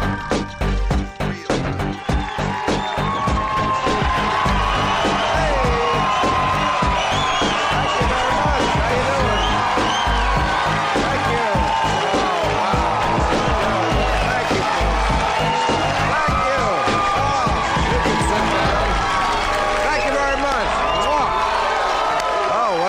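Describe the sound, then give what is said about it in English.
A large studio audience at a late-night television show taping cheers and whoops loudly and continuously, with scattered clapping and shouts blending into a dense, sustained roar throughout. “Sounds like a hot crowd, I can tell.”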